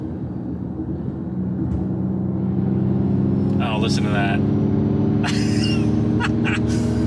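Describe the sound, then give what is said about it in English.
An electric car's simulated propulsion sound hums as a steady, low, layered drone with a jet-like roar, while people talk over it briefly. “You want to turn on the propulsion sound and see what that does?”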